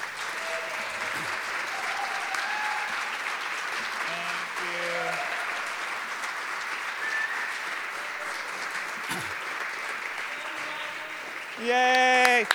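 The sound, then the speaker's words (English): A large audience claps steadily and continuously for an encore, a dense, even wash of applause with faint scattered whoops, ending in a louder cheer or shout. “This is that thing where it's like, oh, they're clapping. Let's do another song.”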